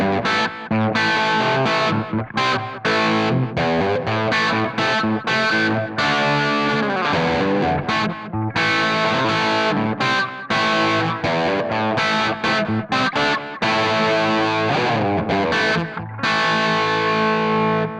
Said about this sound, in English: I'm using a full tone tube tape echo for the slap back, and that is after the amplifier. So I'm not hitting the front end with the echo. That's after the amplifier. Let's listen to it first without the Beano boost.